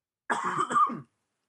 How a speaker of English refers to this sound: Coughing now.